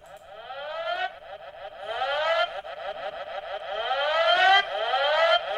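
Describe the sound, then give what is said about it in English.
A police siren wails in repeated rising sweeps, roughly one per second, loud and steadily growing louder, with no voices. “I was gonna do that, but I feel like the police siren is this is the inappropriate time to maybe play that.”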